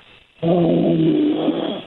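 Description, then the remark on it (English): A man, a phone caller who has been on hold to a radio call-in show for nearly 90 minutes, snores once, a long, loud, rattling inhale with a low buzzy drone that starts abruptly after a brief hush and holds steady before easing slightly at the end. “He's snoring.”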